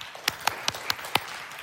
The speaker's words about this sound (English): Clap if you hated that.